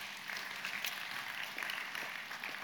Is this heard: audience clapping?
yes